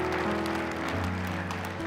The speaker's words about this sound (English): Can we just clap and celebrate with those who have made that choice?